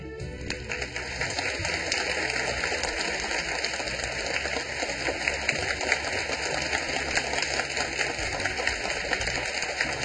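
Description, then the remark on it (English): An audience applauds to thank His Excellency and the distinguished guests at an event in Taiwan, in a dense, steady wash of clapping that holds at an even loudness for about ten seconds, with no voices over it. “Let us please give a big round of applause to thank His Excellency and all the distinguished guests.”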